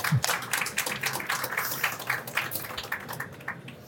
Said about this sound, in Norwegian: Klarer vi å gi det en liten applaus, folkens?